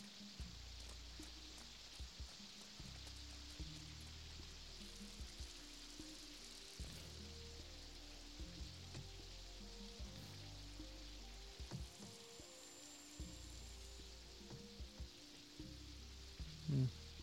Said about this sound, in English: And it's raining.